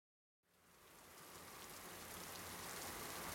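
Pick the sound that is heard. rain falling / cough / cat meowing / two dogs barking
rain falling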